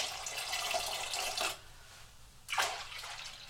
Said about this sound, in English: The next thing we need to do is 46 ounces of pineapple juice. So 46 ounces of pineapple juice getting poured in there.